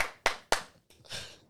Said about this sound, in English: Yeah, we're like, bro, this is not how you clap. This is how you clap, man. No. Do it on this angle. This is how you clap. You do it on this angle.